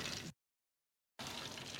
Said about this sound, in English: I've got some chicken fried steak already frying in a big skillet with oil and a little butter for color, and that's what brings the cowboys to the kitchen.